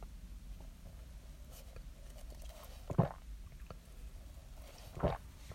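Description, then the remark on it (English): Two short sips of coffee from a cup, about two seconds apart, each a soft slurping burst against a quiet, faintly hissing background with no talking. “Wouldn't it be something if, like, the entire rest of my podcast is just me drinking coffee?”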